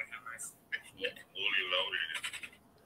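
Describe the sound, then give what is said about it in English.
A tinny, thin voice echoes back through a phone speaker, faint and slightly delayed, with a few short bursts of garbled talk over quiet background hiss. “Okay, you somebody echoing that's back me.”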